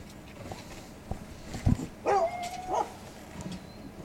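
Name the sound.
hunting dogs barking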